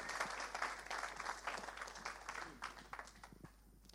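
A group applauds with dense, steady clapping that holds for a few seconds, then gradually thins and tapers off toward the end.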